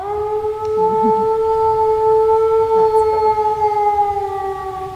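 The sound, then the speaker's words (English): A person imitates a Mexican wolf howl on an icy dirt road, holding a long, steady, siren-like tone that stays level in pitch for several seconds over a low rumbling background. “starts with a Mexican wolf howl.”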